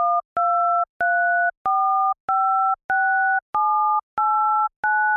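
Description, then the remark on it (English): Nine touch-tone telephone keypad beeps in an even, steady sequence, each a clean two-pitch tone. The lower row pitch steps up every three presses while the upper column pitch cycles through three notes. No talking. “If you listen closely, you can hear how the row pitch, which is lower, changes every third button, while the same pattern of three pitches for the columns repeats on top of it.”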